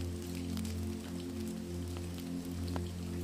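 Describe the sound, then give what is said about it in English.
Steady rain falls outside with scattered, distinct droplet taps, heard at moderate volume over a constant low humming drone, with no voices present. “You drift between the story in your hand, the rain outside, and the soundtrack that accompanies it.”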